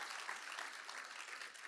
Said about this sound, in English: You can go and sit down. Let's applaud these guys. They're doing a great job.